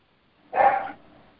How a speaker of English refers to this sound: No, that's the neighbor's Chihuahua. Okay. It's unhappy. Oh. It's fearful, and it spends the day barking.